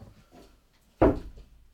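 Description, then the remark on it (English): Knuckles rap on a window at a squirrel on the garden lawn: two sharp knocks, the first a loud rap with a brief rattling tail and the second following quickly, with faint quiet sounds before them. “I'm just going to rap on the window because squirrels attack cats.”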